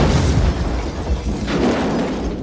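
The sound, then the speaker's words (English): A car bomb explodes in a loud, sustained blast, its deep rumbling boom and crackling roar filling the whole clip without letting up, with no voices. “It's going to take a lot more than a couple of car bombs to get us off this case.”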